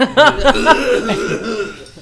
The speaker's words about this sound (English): coughed all over the side of my face.